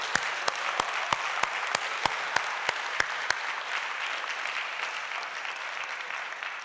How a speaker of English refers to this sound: Come on, give God a hand clap of praise for that.